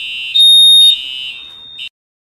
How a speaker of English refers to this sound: I'll definitely cut that together, but there was just a fire alarm going through Burnett Hall. Had to sit outside for like 20 minutes. There was some smoke going through the hallways, but I think all's good now.